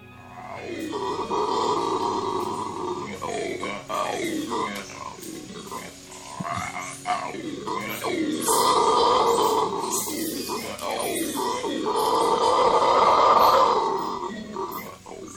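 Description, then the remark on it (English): Red howler monkeys give deep, gurgling, roaring calls in repeated surging bouts, loud and resonant, swelling and fading over several seconds with guttural grunting between. “And that gurgling sound is a red howler monkey.”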